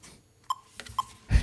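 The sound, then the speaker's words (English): An electronic metronome, heard through a hotel room door at about 1 a.m. as a musician practises his timing to it, gives two short, mid-pitched beeps spaced evenly half a second apart, with a faint click between them, before a louder, rumbling burst of noise at the end. “Yeah, I hear his metronome, and he's practicing to his metronome at like 1 a.m., you know, after playing a show that was as high energy as any I'd ever seen, and he was just working on his timing and practicing.”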